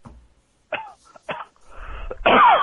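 A few short coughs with brief pauses between them, building to a louder, harsher final cough. No one speaks.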